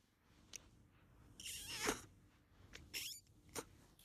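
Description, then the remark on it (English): Misty, a shy cat, gives a tiny, high, squeaky meow that rises and falls in quiet surroundings, with a few soft rustling clicks and a short second squeak afterward. No one speaks. “It's like the tiniest old meow you ever done.”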